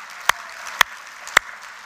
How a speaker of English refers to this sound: First of all, let's give everybody a round of applause for doing that.